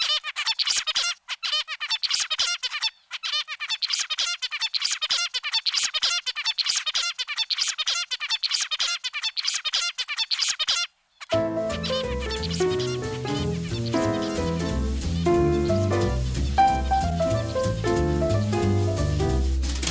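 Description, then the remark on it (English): An adult zebra finch sings a rapid, buzzy, stereotyped song of chirps repeated in a steady, unvarying pattern for about ten seconds, clear, before music comes in and takes over. “As they grow older and learn, the baby bird's babble becomes more boring and predictable, or what researchers call the stereotyped, never-changing song of adult zebra finches.”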